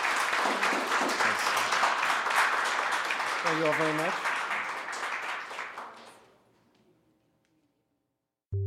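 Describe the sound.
Loud, sustained audience applause with dense clapping for about six seconds, then fading out; a voice briefly speaks over it, followed by near silence and a short sound at the very end.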